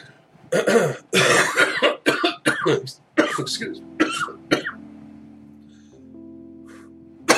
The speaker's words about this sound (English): Excuse me. A couple of coughs. Whew. Forgive me there. Just a little choking to death. No, it wasn't that bad. It was just, it just caught with me.